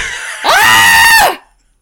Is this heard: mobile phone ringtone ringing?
no